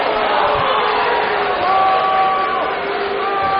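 A crowd at a Michigan high school (MHSAA) basketball game roars in disapproval after a foul is called, a dense, sustained wash of many voices with a few drawn-out tones rising above it, like jeers or whistles, loud throughout.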